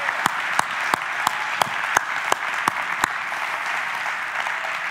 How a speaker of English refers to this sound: Come on, why don't you hiss the enemy away today with a clapping of your hands in declaration.